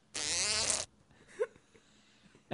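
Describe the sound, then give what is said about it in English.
A loud, buzzy fart sound effect blasts for under a second with a wobbling, rippling tone, then a couple of faint short noises follow in near quiet. “I'm out of fart sound effects.”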